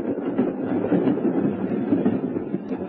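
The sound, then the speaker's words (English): An underground train rumbles steadily past in a tube station, a dense, continuous low roar with faint rattling and no pauses, lasting the whole moment with no voices. “It's an awfully funny place to propose, isn't it? Lying down in a tube station.”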